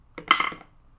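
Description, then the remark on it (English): Dice tumble in a dice tray with a foam bottom and wooden sides, rolling a one and a two: a quick burst of light clicks and clatter over about half a second, fading into silence with no voices. “Also, want to hear what my dice tray sounds like? Yeah, so this one's the foam with the wood on the sides.”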